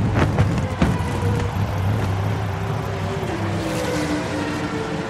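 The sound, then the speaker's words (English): A steady, loud roar of race car engines drones throughout as the cars whiz past close by on a track, with a faint shift in pitch midway; no one speaks. “Look, the race cars are whizzing past us, but we're on another road right next to the track, closer to the center.”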